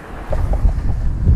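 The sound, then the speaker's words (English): Strong wind buffets the microphone, producing a continuous low, rumbling roar with gusty surges that swell louder toward the end, no voices present. “boy, it's windy. I may have to pause this.”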